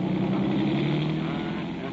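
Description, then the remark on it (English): A police car's engine roars steadily as the vehicle accelerates, the loud, continuous motor drone fading slightly toward the end as it pulls away. “Look at him pick up speed.”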